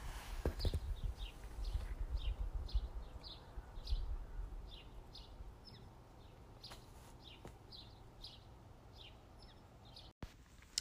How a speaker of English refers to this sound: Sometimes while I'm backpacking, I just take a moment to take in all of this quietness and serenity while I'm backpacking because it's not like this in the city of Missoula. So I was able to capture a moment of birds chirping for you. So here you go.